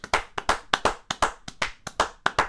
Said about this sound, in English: Can we get a round of applause for America? Another one. Another round of applause.